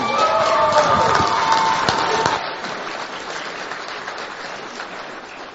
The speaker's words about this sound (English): So would you all give a round of applause?